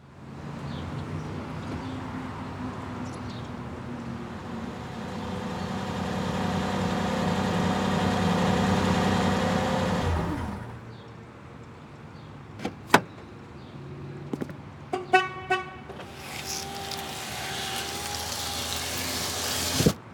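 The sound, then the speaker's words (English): A steady engine hum fills a car park for about ten seconds, then fades, followed by door clunks, clicks and a whirring mechanism, with the idling murmur returning faintly near the end. “We cut to the car park.”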